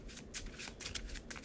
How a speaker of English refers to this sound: Shuffle a Logical Reasoning back into my deck because I didn't use it.